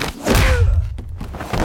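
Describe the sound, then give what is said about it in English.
A heavy, dull punch sound effect: a loud, low thud lasting about half a second, followed by a brief pause and a fainter second thump, with no voices. “Or maybe they add like a punching sound if the punch isn't loud enough in the stunt scene.”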